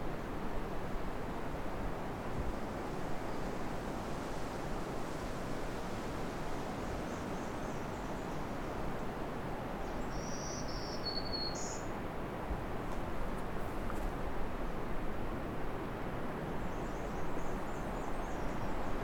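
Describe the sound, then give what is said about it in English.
A short, high black-throated green warbler song sounds once, thin buzzy notes partly buried under a steady, loud rushing background like wind or running water. “Got a black threaded green.”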